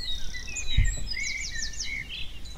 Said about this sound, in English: However, other scientists and artists took advantage of the COVID-19 quiet buzz to record the first global sound map of the Spring Dawn Chorus.